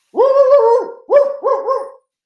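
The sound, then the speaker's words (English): A dog barks loudly in drawn-out, almost howling tones: one long yowling bark followed by three shorter ones in quick succession, with no talking. “It happens every time I talk about werewolf magic, my dog goes crazy.”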